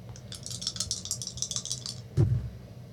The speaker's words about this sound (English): Why don't you make me a strength roll? Strength. Okay.